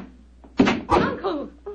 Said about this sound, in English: Someone's opening the door.